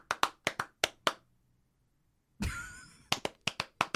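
Sharp hand claps in quick rhythmic bursts, about five, then a pause and a brief noisy rush, followed by another run of six or so crisp claps standing in for a beat, done in place of music that would not play.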